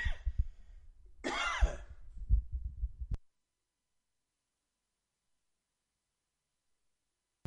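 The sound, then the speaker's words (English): A rough coughing fit lasting about three seconds, harsh bursts and throaty rasps running together, then it stops abruptly and silence follows. “I got into some kind of coughing spell or something this morning.”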